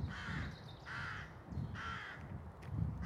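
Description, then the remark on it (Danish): Rooks caw in a rook colony: three harsh, rasping calls repeat at a steady pace, loud, over a low, busy background of further birds. “Vi har rågekolonien.”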